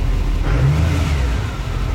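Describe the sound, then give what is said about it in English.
A turbo diesel engine revs with a deep, steady rumble, swelling briefly in the middle before settling, with a faint whooshing intake whir above the low drone. No one speaks. “You can hear the turbo. Yeah, you hear the intake, yeah. Smooth, though. Doesn't quite sound Duramax, though, does it?”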